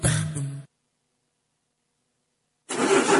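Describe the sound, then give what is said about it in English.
A car engine cranks and sputters without catching, a short grinding burst that cuts out, a pause of silence, then a second rough attempt. “Gosh, this car is giving me lots of trouble.”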